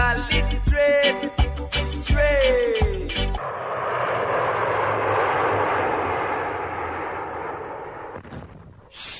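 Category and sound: vehicle, airplane engine flying overhead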